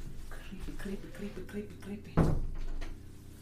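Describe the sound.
A door is closed, shutting with a single solid thud partway through, fairly loud, preceded by soft shuffling and faint muffled talk in the background.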